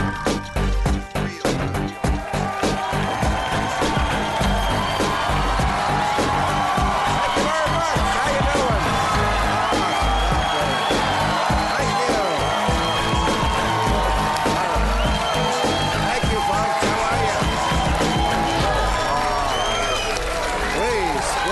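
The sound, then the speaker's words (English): A large studio audience at a late-night talk show taping cheers, whoops and applauds loudly and continuously, a dense wall of clapping and shouting from start to finish. “Thank, look at this crowd. What a crowd.”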